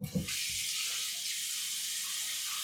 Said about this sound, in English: I'm sorry, I'm just washing dishes.